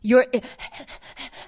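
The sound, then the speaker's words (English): A person imitates a dog panting: a quick voiced start, then a steady run of rapid, breathy huffs, fairly loud, with no other sounds around it. “Think about a dog panting after running around in the summer heat.”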